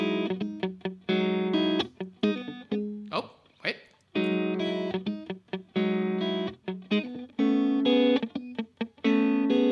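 A riff built from triad chords based on the notes E and A, played on an effects-heavy electric guitar: loud, punchy chord stabs in a syncopated rhythm, broken once by a short noisy scrape, with no voices.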